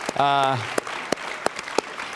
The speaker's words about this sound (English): So you can clap on that. That would be a good thing.